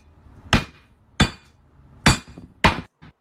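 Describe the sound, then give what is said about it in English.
A hammer strikes a glass Crown Royal Peach liquor bottle four times, loud, sharp hits at uneven intervals, followed by a fainter fifth tap. The glass rings but never shatters, and no one speaks. “I want to know how the fuck this thing is not shattering. That's Crown Royal, isn't it?”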